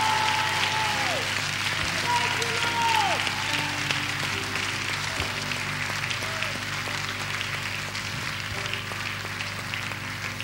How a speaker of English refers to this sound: One more time, let's give the Lord a hand clap of praise. He's so good.